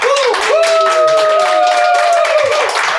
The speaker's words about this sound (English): The studio audience applause was kind of shitty. So let's do it one more time. Studio audience here tonight.